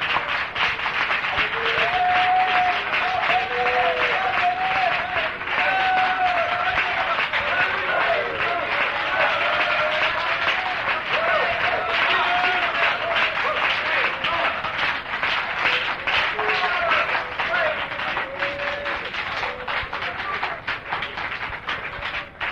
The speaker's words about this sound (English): Let's clap for the Lord once and just warm ourselves up and loosen ourselves up this morning.